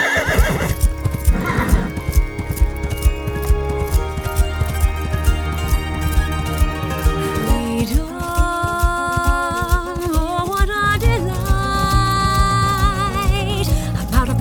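A horse ridden into town gallops, its hooves drumming in a fast, steady rhythm throughout, while a loud whinny rises and falls partway through. No one speaks.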